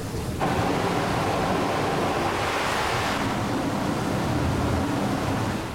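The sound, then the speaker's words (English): A loud, steady blast of hissing steam bursts abruptly from one of a ship's tall funnels and keeps roaring at an even level for several seconds, a dense rushing noise with no voices. “And just as someone kicked it out of the way, a hissing blast of steam began to escape one of the tall funnels.”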